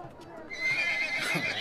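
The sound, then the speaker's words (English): A horse neighs loudly, a shrill, wavering whinny that rises after a quiet start and holds for about a second, with no one speaking over it. “As a squire, can I attempt to calm down the horse?”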